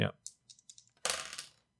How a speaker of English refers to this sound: I need you to roll two dice for your hacking roll.